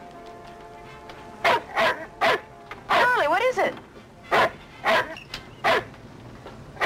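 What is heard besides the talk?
dog barking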